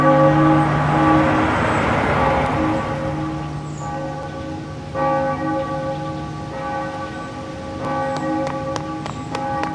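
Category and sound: sound effect, church bell tolling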